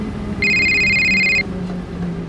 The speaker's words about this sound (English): What is that? What? It's nothing. It's just someone's cell phone or something.